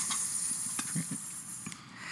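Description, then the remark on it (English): A steady, airy hiss like a snake's, running unbroken for about two seconds at a fairly low level, with a few faint soft knocks underneath and no talking. “Just like a snake hissing in the background.”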